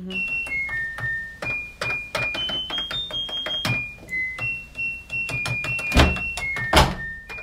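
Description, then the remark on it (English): A washing machine's electronic beeps, used by a music producer to play a pop song, sound a quick melody of steady, high-pitched tones stepping up and down in pitch, punctuated by sharp clicks and a couple of louder thumps. “Ugh, it's a washing machine. It is a washing machine.”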